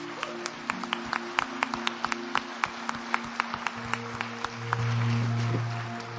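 A church audience in Edinburgh gives a round of clapping: distinct, fairly regular claps repeating steadily over sustained low musical tones, with no voices heard.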